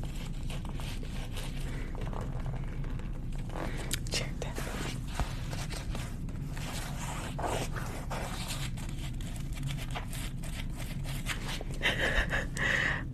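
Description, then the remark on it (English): Quiet mouth sounds, wet clicks and soft breathy noises, mixed with irregular light tapping on a chair, continuing steadily with no talking over a low background hum. “Mouth sounds and chair tapping.”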